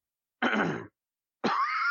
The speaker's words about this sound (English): Excuse me. I love how you really had to clear your throat out to get into all this, because there's a lot here. Well, my throat's kind of bothering me at the moment.